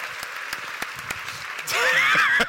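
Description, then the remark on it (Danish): An audience claps to show they have seen the Danish TV series Taxa, in a dense, steady patter that swells louder partway through, with high whistles or cheers rising above the applause near the end. “Klap, hvis I har set Taxa.”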